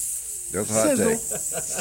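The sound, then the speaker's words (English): A man's voice imitates a sizzling hiss, a steady airy hiss lasting nearly two seconds, with voiced sputtering sounds mixed in partway through. “Sizzle. That's a hot take.”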